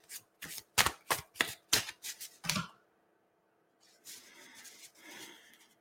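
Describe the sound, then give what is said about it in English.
A deck of cards being shuffled: a quick run of sharp, papery slaps and riffles, a brief pause, then a softer, continuous shuffling rustle. No one speaks. “I'm going to go back to shuffling the deck.”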